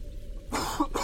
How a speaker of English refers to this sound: I'm coughing. Oh man, the fog gotcha.